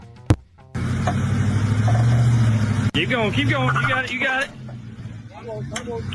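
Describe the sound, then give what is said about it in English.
A sharp pop as a truck, put in reverse to get it back down, drops onto the ground, with a second crack about half a second later as its airbag deploys, over a steady engine rumble, followed by excited voices calling out. “So that little pop you heard was as soon as the truck hit the ground, about a half second later, the airbag deploys and knocks the dude's hat off.”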